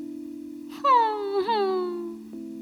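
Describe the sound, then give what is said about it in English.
A voice performs a single drawn-out whimper as the story character Foundy whimpers and sniffles, a high whining tone that slides slowly downward with a brief wobble midway, heard over a steady low hum. “Foundy whimpered and sniffled.”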